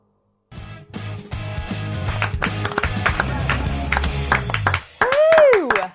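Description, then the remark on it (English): A burst of lively clapping, many quick overlapping claps over a low humming backdrop, lasting about four seconds, then cut off by a brief loud tone that swoops up and back down. “Nothing like getting the clap on a Monday night.”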